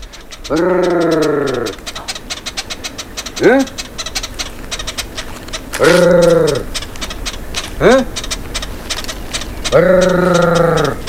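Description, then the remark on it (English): A human voice of a Yao honey hunter from Mozambique repeats the honey hunters' call three times: a long, loud, rolling trill followed by a short rising grunt, with faint clicking noise in the background. “There's another group in Mozambique, the Yao honey hunters, and they use a trill followed by a grunt, which Max is going to play for you now.”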